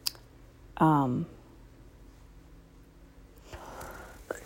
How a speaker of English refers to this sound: But I'm sorry for all the coughing. Like I said, I think I got insulation. I think I breathed it in just because earlier, like, I don't know what happened. I had like this really bad cough